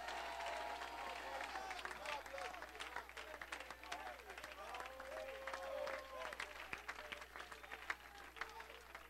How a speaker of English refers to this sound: If you believe that, clap your hands and shout to God. Come on, I mean shout to Him.